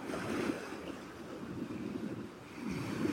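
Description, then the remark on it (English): Ocean waves wash steadily onto the shore in a continuous broad rush, with swells building near the start and again at the end. No voices are heard. “Let's sing to the waves.”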